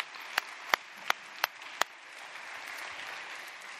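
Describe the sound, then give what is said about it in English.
Five loud, evenly spaced claps ring out about a third of a second apart, then give way to a softer, steady wash of scattered applause from a crowd: seniors clapping for a reading of scripture at a Baccalaureate Sunday service at Lover's Lane. “Seniors, y'all can clap for a reading of scripture.”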